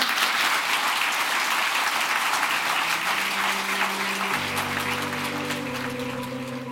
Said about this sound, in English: Thanks a lot, Lea, for this most enriching discussion. An applause for Lea.